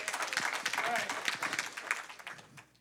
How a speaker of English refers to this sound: That deserves more than three people in the room clapping.